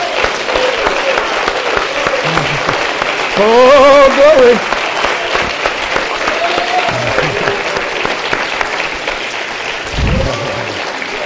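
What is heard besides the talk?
audience clapping hands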